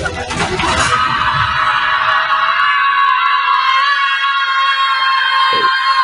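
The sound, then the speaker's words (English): Several children scream together at full volume, a loud, sustained high-pitched shriek that holds steady for several seconds after a brief noisy start, with no talking over it. “The kids think it's fun, and she thinks it's meaningful to do that screaming.”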